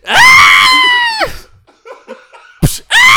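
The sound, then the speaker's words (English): A loud, exaggerated wailing yell, as if being hit by a belt, held for over a second, then softer scattered vocal noises, a sharp crack, and another piercing yell starting right after. “If you yell like that, I wouldn't even whoop you.”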